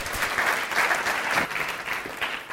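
A room full of people claps steadily for a speaker who has just finished, a dense, even patter of hands that holds at a fairly loud level for a couple of seconds without any voices over it.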